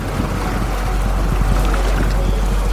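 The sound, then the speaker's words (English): A steady, loud rush of churning water fills the whole recording, dense and continuous with a deep low rumble, from a fast-flowing river running high with a swift current. “And there's this, the river.”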